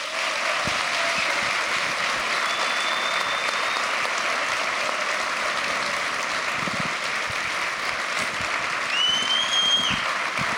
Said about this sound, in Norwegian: Atle Antonsen, Arne Scheie, Bjarte Kjøstheim, gir dem en god applaus.